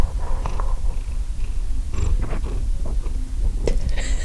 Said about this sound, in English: I think purring means he likes it.